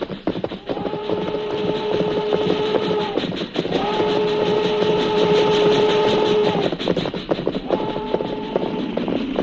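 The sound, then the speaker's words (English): A slow-moving freight train rumbles loudly along the rails with a steady clatter of wheels, while its horn sounds three long, drawn-out blasts. No one speaks. “Train go plenty slow now.”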